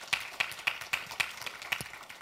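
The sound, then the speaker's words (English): A church audience claps hands in thanks to the Lord in a steady, even rhythm, about four sharp claps per second, with a dense wash of scattered clapping filling the gaps between beats. No one speaks. “Would you give the Lord a hand clap of thanks?”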